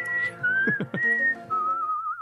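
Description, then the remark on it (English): A person whistles a short, wavering melody, with a steady tone that dips and rises before settling on a final held note. A few soft percussive taps sound underneath midway through. “Just need to get the whistles in.”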